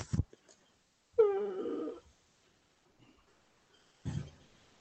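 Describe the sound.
A person imitates a worried bear growl, a short, wavering, whimpery rumble of under a second, followed by a quieter, rougher growl after a pause.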